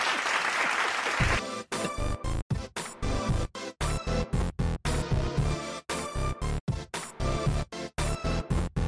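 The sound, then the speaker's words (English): A loud burst of audience applause lasts about a second and a half, then gives way to punchy, rhythmic music with repeated sharp stops and no voices. “Clap on.”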